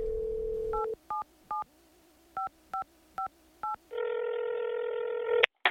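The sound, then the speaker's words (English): A telephone call to an Arctic bird researcher: a steady dial tone gives way to seven quick, evenly spaced keypad beeps, followed by a longer buzzing ring tone that ends in a sharp click. “Here, let me give her a ring.”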